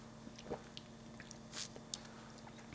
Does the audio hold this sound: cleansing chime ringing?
no